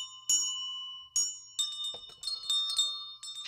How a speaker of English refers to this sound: Mom, I'm up here playing handbells for a little while. Leave me alone. I practice my handbells. You're only ringing them with one hand.